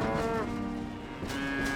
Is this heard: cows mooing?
yes